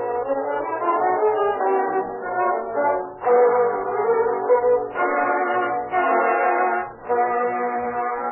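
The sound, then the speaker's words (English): A loud, steady train horn sounds in the yards of the Western Railroad in Portola, holding long sustained blasts with brief breaks between them, and no voices. “In the yards of the Western Railroad in Portola, a man walks stealthily along the station platform.”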